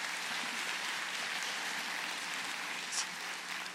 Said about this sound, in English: Can we give this family a round of applause?